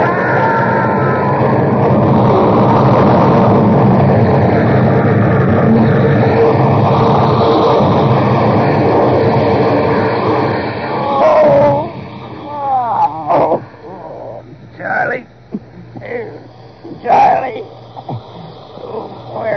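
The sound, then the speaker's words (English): A loud, sustained roaring crash of a train wreck, as a train hits something on the track, fills the first ten seconds, then gives way to scattered shouts and cries in the quieter moments after. “Sheriff Wagner of Ravenna was notified of the wreck.”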